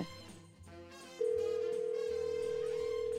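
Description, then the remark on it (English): A single loud, steady telephone ring tone sounds for about two seconds as a call goes through, layered over soft background music that plays alone beforehand. “We're going to get him on the phone.”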